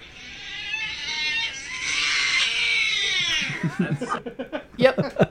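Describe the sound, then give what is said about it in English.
A cat lets out one long, drawn-out meow that wavers in pitch for several seconds, loud, then people start talking and laughing right after it. “That poor cat.”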